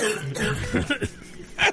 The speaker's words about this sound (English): has a cough.